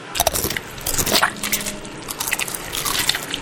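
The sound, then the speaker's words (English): Crunching as someone bites into food that is crunchy and soft and keeps chewing, a run of irregular sharp crackles and wet squishes with no talking. “It's crunchy and soft.”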